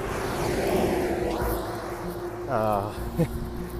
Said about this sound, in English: You're probably hearing cars pass now. Probably hearing some grit underneath my shoes as I'm out here walking. Here comes a dump truck.